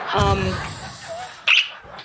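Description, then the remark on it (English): A pet bird flies into a person's face and gives a short, harsh squawk, following a brief vocal cry, with a scuffle of noise suggesting quick movement. “My bird just flew into my face.”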